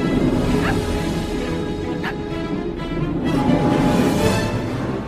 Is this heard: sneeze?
no